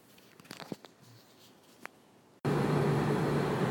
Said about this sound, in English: It's you probably hear the air conditioner blowing like crazy. It's 95 degrees here.